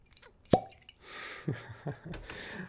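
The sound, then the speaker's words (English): A single sharp cork pop rings out as the stopper is pulled from a bottle of small barrel bourbon, followed by a few soft handling knocks and faint rustling. No one speaks. “So, here comes the pop on small barrel bourbon.”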